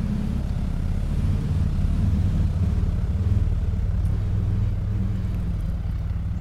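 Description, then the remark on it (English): A steady low engine rumble of traffic going by on a road near Furnace Road, with a continuous droning hum and no voices. “So you'll hear some traffic go by.”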